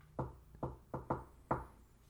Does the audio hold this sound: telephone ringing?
no